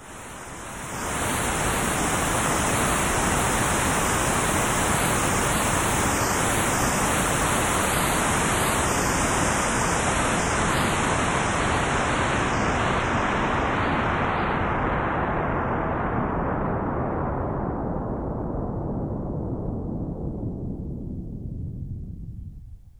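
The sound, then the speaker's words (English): Steady hiss of white noise, loud and continuous, whose bright upper edge gradually darkens as a low-pass filter sweeps downward, leaving a muffled rumble before it stops. “One type of filter, called a low-pass filter, will modify the white noise according to the variable frequency of the upper cutoff point.”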